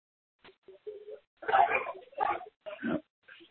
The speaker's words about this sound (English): Here goes a little dog.